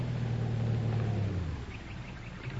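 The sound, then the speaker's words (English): A car's low engine rumble rolls along a road, strong at first and then easing off, while faint birds chirp in the background. No one speaks. “Oh, hey, here comes a car.”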